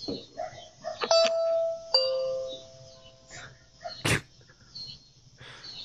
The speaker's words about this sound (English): The guy just rang the doorbell. We have like a ring cam of the dude standing out there, the solar salesman.